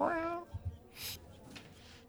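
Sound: cat meowing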